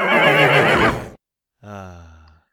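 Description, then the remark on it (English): A horse, Texas the Psychic Horse, neighs loudly, a full whinny lasting about a second, then after a short pause a second, softer call with a rough, vibrating tone that trails off. “I think now's a good time to move on to a regular feature of the show, which would be Texas the Psychic Horse.”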